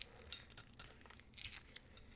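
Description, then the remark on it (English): A paper strap bearing a hand-numbered batch number, 407, being torn off a spirit bottle to open it: a few short, dry ripping and crinkling bursts, bright and scratchy, coming in uneven spurts over a couple of seconds with no talking. “So the bottle has a paper strap, and I'll post a couple photos on social media.”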